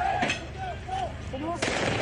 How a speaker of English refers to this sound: Some protesters threw fireworks at police.